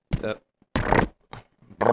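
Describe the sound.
A person imitates with their mouth the sound a man's fart made, blowing four short, sputtering raspberry buzzes in an uneven rhythm, each a rough, fairly loud burst with a low, buzzy tone and brief pauses between.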